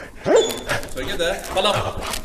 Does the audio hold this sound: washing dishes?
no